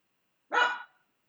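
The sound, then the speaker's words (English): A single short bark from a pug, a brief harmonic yelp that starts sharply and fades out in under half a second, with silence around it. “I hear a pug.”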